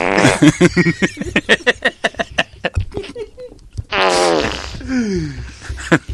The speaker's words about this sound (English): It's just nice to sprinkle in a fart every once in a while.